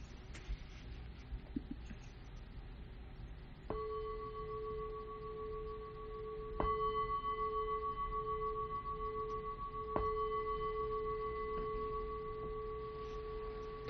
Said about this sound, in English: So sitting comfortably, I'll ring the bell three times to begin.